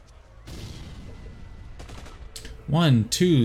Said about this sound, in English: give me an intellect legends roll, please. If you have any kind of background in secrets, you get an additional dice.